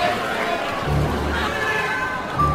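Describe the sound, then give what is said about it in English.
A dense, steady hubbub of many overlapping voices, lively audience chatter from a crowd at a fairly loud level throughout, with no single speaker standing out. “Everybody settle down. This is a feisty crowd.”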